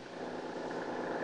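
A car engine idles outside with a low, steady rumble, a smooth unbroken drone with faint vibration and no voices.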